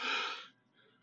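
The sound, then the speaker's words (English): A single loud, breathy yawn, a strong airy exhale for about half a second that drops off into a faint, trailing breath. “Oh, yawning and stuff.”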